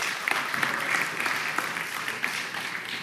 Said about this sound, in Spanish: Dense un aplauso, vas a hacer un buen trabajo.